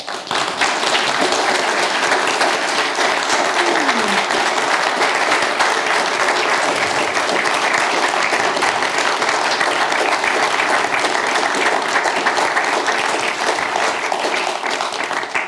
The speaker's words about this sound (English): But I want to thank sincerely Dr. Rosaleen McDonagh for sharing in this extraordinary conversation this evening. I think you deserve the most enormous round of applause.